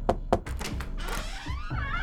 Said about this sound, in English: Every night, Tess heard the handle of her chamber door slowly turn.